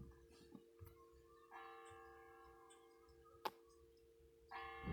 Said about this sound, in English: I bet your town doesn't have a loud town bell like that. 'Cause that's loud.